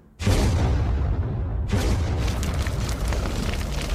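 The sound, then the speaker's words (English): A homemade mix of downloaded arrow, explosion and fire-burning sound effects: fiery arrow whooshes, a sudden booming burst giving way to a sustained roar, then a second blast, with the rumbling, crackling fire noise carrying on to the end. “I googled arrow sound effect, explosion sound effect, and then fire burning sound effect”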